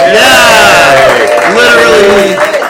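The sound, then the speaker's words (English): A live show audience bursts into loud, sustained cheering, with voices whooping and calling out in rising and falling pitches over a steady wash of crowd noise, lasting a few seconds. “We got a great crowd here tonight.”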